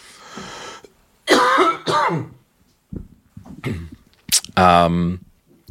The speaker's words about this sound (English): Excuse me. Ew. I've still got that really bad cough.